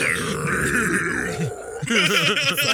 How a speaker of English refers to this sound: Damn, burping into the microphone.